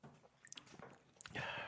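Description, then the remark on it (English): Someone takes a quick sip of a shot of 100-proof SoCo liquor, with soft wet slurping clicks and a gulp, then a breathy exhale. The sounds are quiet and brief, with no talking. “Take a little sippy sip before you put that in there.”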